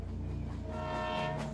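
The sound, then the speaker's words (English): A train pulls away from a station with a steady low rumble, while station bells ring sustained tonal notes over it to signal that the train is leaving, constant throughout. “Soothing station bells begin to ring, alerting that the train is leaving the station.”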